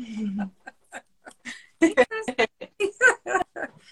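A dog gives a string of short, sharp barks and high whimpering yips, loud, coming in irregular bursts with brief pauses between them.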